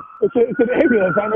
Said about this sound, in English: It's an ambulance.